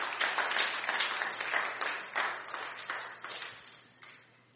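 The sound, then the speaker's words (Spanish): An audience applauds as praise to God, many hands clapping steadily in a dense, crackling wash that swells in waves and then gradually tapers off toward the end, with no one speaking. “Fuerte aplauso a Él.”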